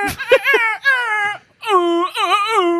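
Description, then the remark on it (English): Someone imitates a siren with their voice: loud, strained wails that waver up and down in pitch, in two long bursts separated by a brief gap. “That was the worst siren.”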